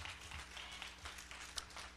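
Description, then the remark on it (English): A crowd claps hands steadily in praise of God, a dense, continuous patter of many overlapping claps lasting a couple of seconds, fairly soft overall, with one sharper clap standing out near the end and no talking. “Give God a hand clap of praise, will you?”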